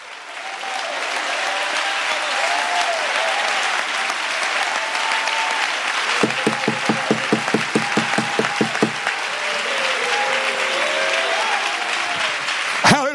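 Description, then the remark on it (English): A large audience claps and cheers loudly, the applause briefly settling into a steady, rhythmic unison clap before breaking back into scattered clapping and shouts. “Clap your hands if you believe that right now.”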